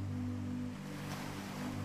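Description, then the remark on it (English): Soft ocean waves wash steadily onto a beach in a continuous hiss, swelling slightly midway, with a low steady hum running underneath and no voices. “Guided Sleep Story with Ocean Sounds”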